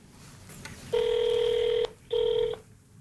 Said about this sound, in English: One afternoon, I called him. I took a deep breath and dialed. Okay, here we go.